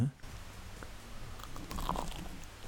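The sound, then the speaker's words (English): A crisp bite into a thick Yorkshire pudding, followed by a few soft chewing crackles, heard alone without talk. “I'm going to turn your mic up so we can hear the crunch.”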